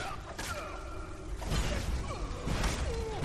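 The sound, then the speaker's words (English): A heavy orcish mace swings through video game combat against ghosts, with three or so loud swooshing hits spaced about a second apart over a busy backdrop of sliding, wailing tones. “A few swings of my orcish soul snares mace. Takes them down.”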